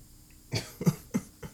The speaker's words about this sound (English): Dude, are you coughing like that at this hour, bro? Are you serious?